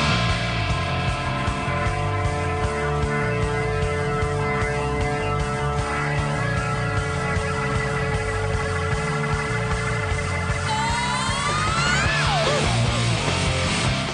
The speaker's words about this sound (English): We have to listen to the single, or the start of the song, because yes, it's all in falsetto.